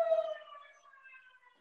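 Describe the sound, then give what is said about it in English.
An outdoor siren, set off in the afternoon during COVID to honor medical workers, holds a steady wailing tone that starts strongest and then gradually fades away over a couple of seconds, with no voices present. “But also because of COVID, in the afternoons, they've been setting the siren off to like honor the medical workers, what have you.”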